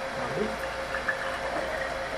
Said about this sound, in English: Okay. All of it? Yeah, all of it. Just go ahead and pour it right on in. Also made red. So both of the clear liquids made a red liquid, Oh, that's awesome.